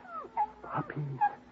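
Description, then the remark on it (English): Six newborn puppies mew and whimper under a water pipe in a cluster of thin, high-pitched squeaks that rise and fall, overlapping softly with no talking. “What's that mewing sound”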